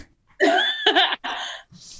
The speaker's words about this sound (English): Oh, sneezing.